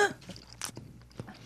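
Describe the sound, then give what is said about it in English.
Crisp crunching bites as a winged insect is chewed, several irregular cracks with a sharp loud crunch in the middle and quieter mouth sounds between. “I mean, I can feel the tentacles and stuff. Oh. You can feel the wings. The wings are tough to chew.”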